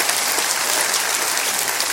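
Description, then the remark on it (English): An audience bursts into loud, sustained applause for the resurrection of Jesus, a dense wash of clapping hands that holds steady throughout with no voices standing out. “Can you clap for that right now?”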